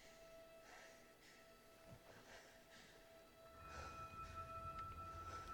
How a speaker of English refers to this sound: The breathing is calm.